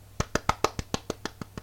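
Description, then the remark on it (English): A single person clapping, about ten sharp, evenly spaced claps in quick steady rhythm, each crisp and fairly loud, with a low hum beneath and no talking; a host applauding at the start of the Big Brother Gossip show. “I'm applauding.”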